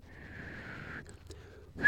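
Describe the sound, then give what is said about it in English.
A person makes a low, steady, breathy whistling sound with their mouth for about a second, then it breaks off briefly before another rising whistle starts at the end. “I can do a low whistling sound.”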